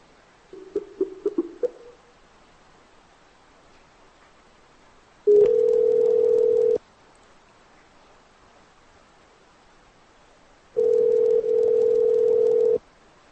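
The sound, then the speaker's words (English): A quick run of short dialing beeps as a phone number is called, then the phone's ringback tone: two long, steady buzzing rings a few seconds apart with quiet between them, clear, no talking. “and I'm going to call a phone number.”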